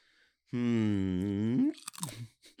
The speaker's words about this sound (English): Excuse me, I crunch on this snazzle here and right in the mic.